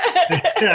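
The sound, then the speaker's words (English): A quick, loud sneeze made of a few voiced, breathy bursts in under a second, with no talking around it. “What happened now? Bless you.”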